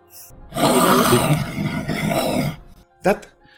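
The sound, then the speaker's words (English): A person makes a loud, drawn-out guttural hawking noise, raspy and phlegmy, as if dredging something up from the throat, followed by a short vocal grunt. “Did you just, like, hawk something up into your hand?”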